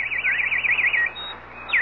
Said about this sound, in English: Listen. That's a very rare nightingale.